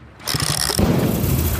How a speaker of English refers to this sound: The gate is open!